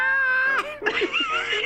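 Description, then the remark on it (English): A person imitates a cat yelling for its dinner, with a strained, wavering wail that slides up and down in pitch, held for under two seconds with a brief break in the middle. “Well, that's why that cat was yelling.”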